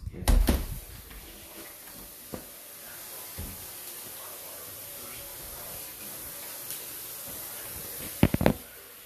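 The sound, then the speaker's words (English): A door is opened, with a solid clunk at the start, a lone tap midway, and a quick rattle of latch clicks near the end, all over a steady airy hiss and faint background voices. “Open the window and the door? No, the back one.”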